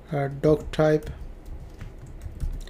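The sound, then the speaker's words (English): Steady typing on a computer keyboard, a run of quick, light key clicks typing out an HTML doctype declaration, preceded by a brief burst of voice at the start. “I type that one.”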